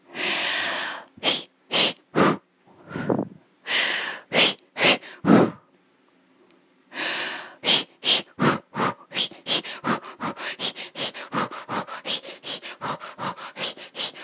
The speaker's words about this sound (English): I'll teach you a really good breathing technique. I motivate my kid to go running yesterday with this. It goes like this.